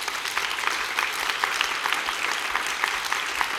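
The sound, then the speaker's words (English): A group of women clapping together with their eyes closed after a count to three, a dense, steady patter of many hands that keeps an even loudness throughout, with no voices over it. “I want you to close your eyes, and I'm going to count to three, and I want you to clap.”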